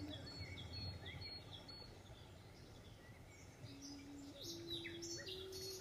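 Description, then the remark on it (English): Birds sing and chirp softly throughout, scattered high calls over a steady outdoor hum, with a faint sustained low tone rising in the background toward the end. “You recognize the song of the birds.”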